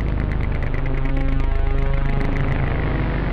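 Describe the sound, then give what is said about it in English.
A steady, droning bed of layered humming tones that throb in a fast, regular pulse, holding at an even loudness throughout with no voices. “Listen to the pulse of these tones.”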